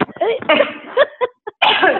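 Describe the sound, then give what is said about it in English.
A woman coughs in several short bursts, mixed with voiced sounds and breaths, fairly loud, with a brief pause before a final stretch, demonstrating a pre-lift of the pelvic floor before coughing. “I'm going to tell them what the knack is while you keep coughing.”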